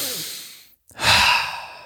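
A deep breath: a long airy inhale, a brief pause, then a fuller, louder exhale that trails off like a sigh. No one speaks.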